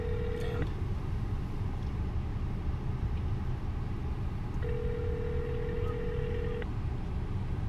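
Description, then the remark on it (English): A phone call ringing out: two long, steady ringback tones about four seconds apart, heard over a constant low rumble like a moving car, with no one talking. “Calling Kalen.”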